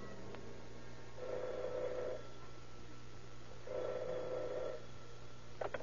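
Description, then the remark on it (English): Late at night, a telephone rings twice at detective headquarters, each ring a steady buzzing tone lasting about a second, separated by a pause, over a constant low hum with no voices. “The investigation is checkmated until late that night when the operator at detective headquarters receives a strange phone call.”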